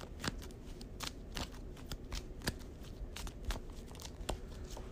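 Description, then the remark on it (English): A deck of playing cards, the discard pile of a card game, being shuffled, a steady run of crisp riffling snaps and papery flicks repeating quickly over a soft background hum, with no talking. “So let me do that one more time after I dug them out.”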